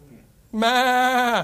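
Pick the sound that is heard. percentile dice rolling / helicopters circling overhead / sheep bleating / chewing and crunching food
sheep bleating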